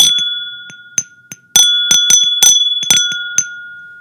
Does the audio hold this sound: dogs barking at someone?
no